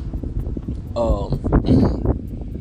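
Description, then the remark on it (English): Strong wind blowing outdoors in nature rumbles and buffets the microphone steadily throughout, a low, noisy roar, with a couple of brief voiced, tonal sounds rising over it in the middle. “Like, right now, I'm not as high as I wanted to be because it's windy as fuck outside, but I'm enjoying nature.”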